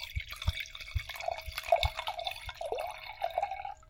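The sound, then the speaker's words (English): A fruity-smelling drink glugs and splashes as it is poured into a glass, with bubbly gurgling and a steady series of soft low thumps for a few seconds, no voices. “Okay, give that a nice pour.”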